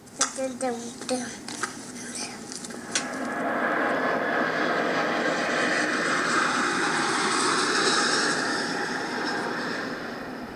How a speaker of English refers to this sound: All right, stop right there. Tell me what you think of that airplane. Come here. Look at me and tell me what you think of it.